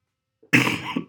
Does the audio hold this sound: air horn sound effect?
no